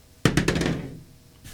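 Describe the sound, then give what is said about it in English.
Dice rolled in low light during a tabletop game clatter across a hard tabletop in a quick burst of four or five sharp clacks, each a little softer, then a brief rattling settle before they come to rest. “These dice are hard to read in low light.”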